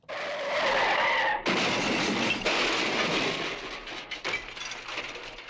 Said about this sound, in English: Let me get that bad car crash one more time, team.